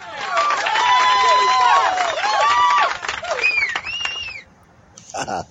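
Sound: crowd cheering and applauding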